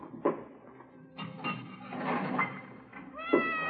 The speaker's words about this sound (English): It's a nice cat you got there. Siamese? A little bit, yeah. It's my wife's.